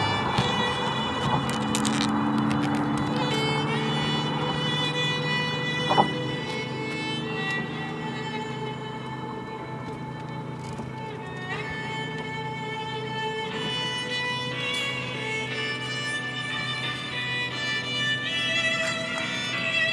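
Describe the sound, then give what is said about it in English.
Steady street traffic rumbles past on a bridge without a break, a dense wash of engine and road noise with high tonal whines layered on top, moderately loud and continuous, no voices. “You can hear it beyond the traffic.”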